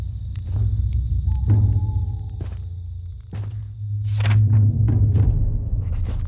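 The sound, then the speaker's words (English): Nighttime forest ambience: a steady low hum with a faint high insect drone on top, scattered soft rustles and crackles, and a few brief tonal chirps. No voices. “The sounds of the forest are soothing at night. A nice repetitive hum as it feels like the environment breathes in and out.”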